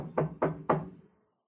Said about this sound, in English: But okay, right. Going down the thing, and I'm knocking. Knocking.